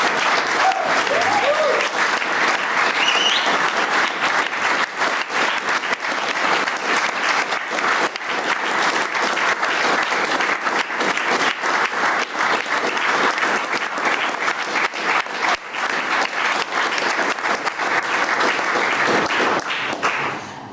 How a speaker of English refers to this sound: I want everyone to give them a big applause for taking that first step.